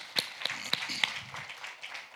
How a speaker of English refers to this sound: So please make sure you give yourselves a round of applause again.